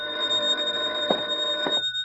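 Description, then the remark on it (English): A telephone bell rings steadily and fairly loud for about two seconds, its bright metallic trill holding without a break and no voices around it. “Then, 2 days later, I got a phone call.”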